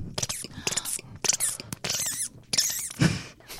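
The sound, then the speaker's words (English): Someone imitates a bird call with a quick, irregular run of breathy chirps and squeaky, whistling tweets, the bursts stopping and starting over a few seconds with no talking. “How did this bird call start? Last time I did this, I was told that it sounded like a vomiting bird. So I'll just do a bird.”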